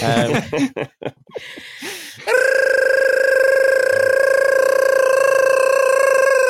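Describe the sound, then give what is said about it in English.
A gibberish alarm sound effect: a voice babbles rapid, wavering nonsense syllables for about two seconds, then holds one loud, steady, high-pitched buzzing note until the end, imitating an alarm. “That's the gibberish alarm, which is getting more high-pitched every week.”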